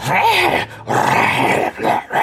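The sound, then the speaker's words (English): Monsters slobbering and cackling as they crunch into zombies and tear at decaying flesh: three loud, rough bursts of wet, growling, snarling noise, separated by brief gaps, with a bestial, guttural quality and no speech. “you can just hear the slobbering and cackling.”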